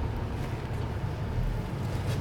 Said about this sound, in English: Just a mail truck.